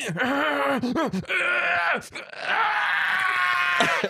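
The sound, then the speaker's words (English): A voice lets out a long, strained cartoonish scream, wavering and bending in pitch with brief breaks, loud, imitating an over-the-top anime-style shriek. “Anime scream.”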